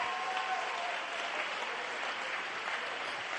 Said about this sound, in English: You ought to be standing right now. You ought to be clapping your hands right now. You ought to be worshiping God right now.